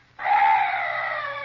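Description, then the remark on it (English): A strange night bird gives one loud, drawn-out cry that starts abruptly and holds steady, a harsh, high, bleating wail with a slight waver and no other sounds around it. “Oh, what's that? Oh, some night bird.”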